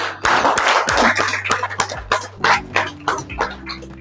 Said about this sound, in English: Who felt it a new experience to wake up July 5th not hungover? I'd like to, y'all should applaud yourselves.